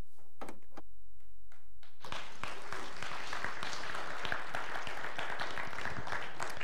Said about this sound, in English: Thank you for cheering, because I think they'll be watching and it'd be good to hear the clap and the encouragement. Just give a big amen so they can hear that all the way in Romania. Can you yell? There we go.